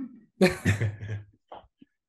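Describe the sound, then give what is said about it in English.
A single sneeze bursts out sharply with a harsh, breathy rush that trails off, followed by a couple of faint short sniffs or breaths. No one talks. “Sneezes over my shoulder, though.”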